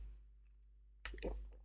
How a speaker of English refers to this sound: Sorry, I've got to take on board water in this heat.